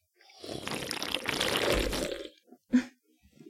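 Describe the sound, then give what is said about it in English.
A loud, wet slurping sound lasting about two seconds, gurgling and watery like liquid being sucked up, followed by a short sharp wet smack and a brief trailing gurgle. “It's called a slurp.”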